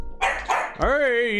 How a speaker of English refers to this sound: What? What? You barking at? The leaves?